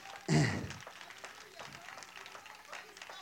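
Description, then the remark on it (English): An audience claps hands in praise to God, a dense, steady patter of many hands after a loud opening burst that sounds like a shout. Voices mingle faintly underneath. “Give God a hand clap praise.”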